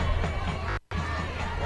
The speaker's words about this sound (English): You can hear applause on other fields here as well. Got lots of games going here.